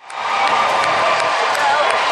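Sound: roaring crowd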